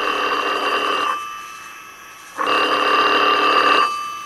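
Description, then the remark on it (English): A telephone rings twice, each trill lasting about a second with a silent gap between, loud with a steady electronic bell tone and no voices. “I get a mysterious phone call in the 13th century from a phone that technically doesn't work.”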